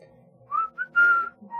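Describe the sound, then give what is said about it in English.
A person whistles a short tune: several clear, pure tones that rise and hold, with small pauses between notes, moderately loud, with no talking. “As we walk away from the stupid dead body, I whistle my tune again.”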